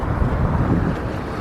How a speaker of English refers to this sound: So you probably hear the wind. I think it's going to be a pretty windy day, but we'll see how it goes.